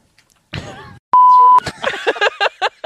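A single loud, steady electronic beep lasting about half a second, a pure tone, marking an edit point in a recording, with a short burst of talking before it and more talking right after.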